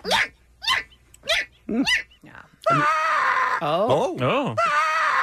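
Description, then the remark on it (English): A person imitates a seagull: four short, sharp squawks in a quick series, then a louder, sustained stretch of high, wavering, warbling cries with rising and falling pitch. “This is my impersonation of a seagull.”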